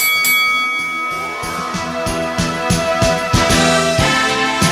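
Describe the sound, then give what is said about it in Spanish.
A boxing bell rings out with sustained, bright metallic tones, layered over a loud, driving music track with steady percussive hits throughout. No voices are heard. “¡Que suene la campana!”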